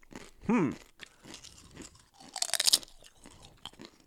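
Crisp crunching as someone bites into and chews thin, light potato chips, a burst of brittle crackles followed by several smaller chewing crunches, with a brief vocal sound near the start.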